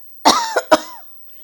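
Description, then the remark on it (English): A short cough in two or three harsh bursts, the last trailing off with a rasp, followed by quiet. “I must cough.”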